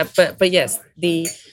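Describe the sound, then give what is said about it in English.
Glasses and tableware clink repeatedly in the lively bar of the Groucho, as people drink. Bright chinks rise over a steady murmur of indistinct voices. “Just so that the listeners don't forget, we are sitting in the Groucho, so there's lots of clinking of glasses in the background. Lots of drinking going on.”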